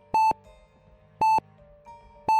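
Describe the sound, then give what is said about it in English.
A small heart monitor clamped to a finger beeps steadily, three clear, loud electronic tones spaced about a second apart, each short and pure-pitched, with a faint hum in the background and no voices. “I forced myself up, and the beeping noise increased. It was coming from a small heart monitor that was clamped to my finger.”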